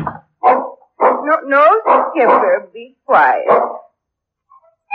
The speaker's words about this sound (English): No, Skipper, be quiet. He knows, poor old dog.